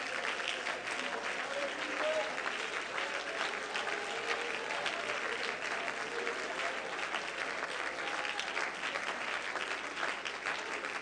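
An audience claps hands steadily for about eleven seconds to praise the Lord, a dense, continuous wash of applause at an even, fairly loud level with faint voices mixed in.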